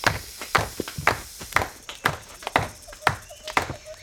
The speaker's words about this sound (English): It is time to clap our hands, bang on the tree, and make as much noise as possible to see if we can make that snake go away. Can you help? Clap with me now.